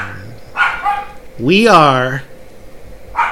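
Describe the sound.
A dog lets out one drawn-out, rising-and-falling bark, loud, between stretches of a person speaking.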